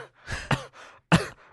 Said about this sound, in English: You okay? You coughing? Sorry. You had a little cough? Had a little something in my throat.